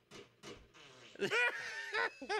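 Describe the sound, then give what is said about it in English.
Two quick sharp gunshot bursts open, then a run of loud, buzzy, wavering fart sound effects, several in close succession, prominent with no talking. “So farts, and so shots and then farts.”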